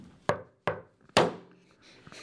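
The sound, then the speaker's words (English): A patterned secret knock on wood: two sharp knocks followed by a louder, brighter slap-like hit that rings out briefly, then a couple of faint taps at the end. No one speaks. “So I was like, all right, let me just add a slap in there so I know it's my friends and I'll hear that slap because it's going to be loud and that'll get my attention too, like in case I don't hear the knocks.”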